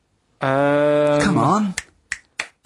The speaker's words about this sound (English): Right, it's the time that most people, I imagine, have been waiting for. Monkey news. Play the jingle.